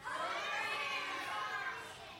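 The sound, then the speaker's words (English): An audience shouts their favorite movies all at once on the count of three, a loud jumbled wall of overlapping voices that holds steady for about two seconds before tapering slightly. “Now, on the count of three, I'm going to have all of you shout that out to me, okay?”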